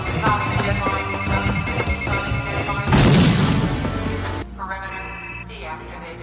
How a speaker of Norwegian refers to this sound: It's not gonna make it. The collar's gonna blow.